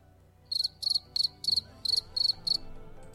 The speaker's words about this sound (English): Crickets have repopulated the earth.